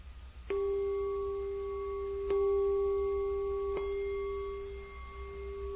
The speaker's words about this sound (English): We hit the bell three times for the Buddha, the Dhamma, and the Sangha.